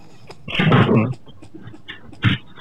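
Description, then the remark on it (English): Rummaging as items are shoved into a fridge: a half-second burst of shuffling and clattering, a quiet pause, then one short knock. No one speaks. “I was putting shit in my fucking fridge”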